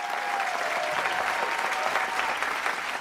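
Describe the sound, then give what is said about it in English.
A crowd claps steadily and densely, a sustained wash of applause at moderate loudness with faint cheering mixed in, continuing without pause throughout. “But behind the cheers and the applause is the darker reality of war.”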